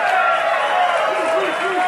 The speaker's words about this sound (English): So here, normally we would close this down because you came here to network, but let me hear by a round of applause